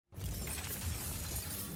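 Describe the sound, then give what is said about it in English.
The sound of the stand Gold Experience manifesting when summoned by Giorno: a bright, shimmering cascade like a stream of gold coins spilling and clinking, dense metallic jingles sustained at steady loudness for nearly two seconds with no voices. “It's a sort of shimmering sound, as if gold coins are coming out of a slot machine or being dropped on the ground.”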